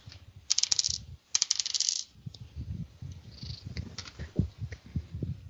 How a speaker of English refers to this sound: Okay. Whoops, rolled the wrong dice.